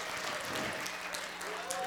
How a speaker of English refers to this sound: And he said if he didn't have a rousing round of applause, he might just go and sit down and not even speak.